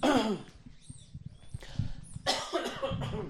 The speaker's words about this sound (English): Please excuse my cough.